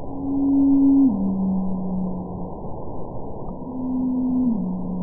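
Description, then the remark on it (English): Two low, droning blue whale calls play one after the other, a call recorded in 2002 followed by one from 2017, each a sustained hum that steps down in pitch partway through, over a steady wash of deep underwater noise. “Over the years, these eavesdropping biologists have noticed a mysterious trend that certain blue whale calls are gradually lowering in pitch over time. For example, here's a call from 2002, followed by one from 2017.”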